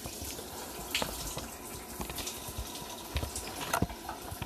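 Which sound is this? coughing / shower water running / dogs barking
shower water running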